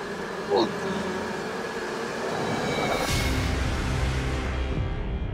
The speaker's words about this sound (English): How you get bees in the shower?